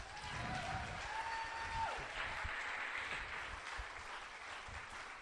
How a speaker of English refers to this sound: You guys give a round of applause for him.